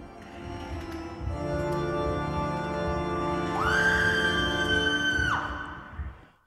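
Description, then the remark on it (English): A loud, shrill scream abruptly rises out of a dense, rumbling din, holds at a piercing pitch for nearly two seconds, then cuts off as the background noise fades. “That was another, I think, screech into someone calling for help.”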